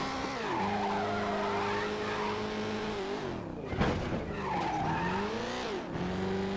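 Racing-game car engine drones steadily while tires skid and squeal in long, sweeping screeches, with a sharper burst of skidding midway, loud, no voices.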